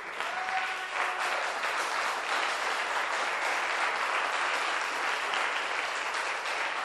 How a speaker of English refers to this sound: I got you. Now everybody is clapping, including the sharp-toothed children. Clap your hands for Jesus one more time.